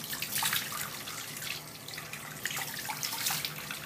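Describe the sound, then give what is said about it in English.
A faucet runs steadily into a sink in a small bathroom with a bath-shower combo, with irregular splashing and sloshing as water is scooped and splashed onto the face to wash it off, fairly loud, no voices. “You just gotta splash water and then, like, it mostly comes off when you dry it.”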